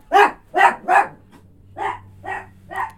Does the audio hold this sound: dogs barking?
yes